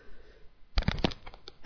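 A person coughs and sputters after sucking a cough drop down the throat while teaching, a cluster of harsh, choking bursts followed by a short pause and then one loud, forceful cough at the end.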